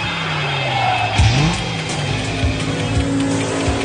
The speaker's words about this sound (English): Ladies, start your engines.